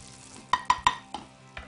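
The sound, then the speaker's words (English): Fat crackles and pops sharply as duck skin fries in a pan while the duck is being basted, about five crisp bursts in quick irregular succession over a low, steady sizzle, with no talking. “We can hear our skin popping.”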